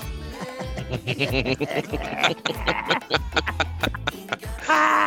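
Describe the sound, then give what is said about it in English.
Donkeys at Pelican Plunge bray loudly in a rough, repeated series of wheezing hee-haw calls that overlap and tumble over one another for several seconds. “Say bye-bye, donkeys. Bye-bye, Pelican Plunge donkeys.”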